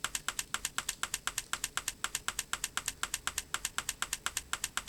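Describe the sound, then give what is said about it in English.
WhatsApp's typing-indicator sound: rapid, evenly spaced clicks repeating steadily for several seconds, crisp and fairly quiet, with no voices over it. “Now, she stopped typing, but she hasn't sent the message quite yet.”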